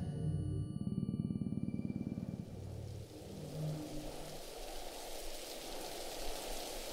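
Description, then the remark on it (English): A low engine rumble idles for a few seconds, then gives way to a steady, soft hiss of drizzling rain in cold winter air that continues evenly to the end. No one speaks. “The Reverend, or Albie as James rubbingly called him, stormed out into the cold winter air and drizzling rain.”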